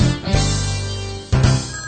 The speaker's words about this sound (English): The phone rings in the house.